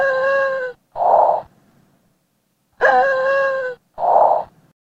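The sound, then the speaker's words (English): Two cycles of noisy, high-pitched stridor breathing in a child: each strained, whistling inhale is followed by a short, rough, breathy exhale, with no talking. “Noisy breathing is often an ominous sign in infants and small children. Stridor's noisy breathing, coupled with increased inspiratory efforts such as nasal and ribcage flaring and suprasternal and sternal retraction.”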